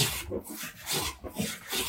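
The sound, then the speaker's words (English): A hand plane shaves across wood, smoothing it, in several quick, rasping strokes, each a broad scraping swish repeating at a steady rhythm, moderately loud with no voices. “It can be used to plane wood nice and smooth.”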